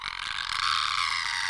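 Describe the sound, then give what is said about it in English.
Someone imitates a monster's screech with the voice: a harsh, high, raspy shriek held steadily for over a second, loud, with no other sounds around it. “Who can do the best Jabberwocky screech though?”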